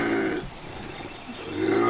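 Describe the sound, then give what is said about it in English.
A bobcat's raspy, rumbling growl swells, fades briefly, then rises again louder, a snarl with no one talking over it. “The scary sounds that a bobcat makes.”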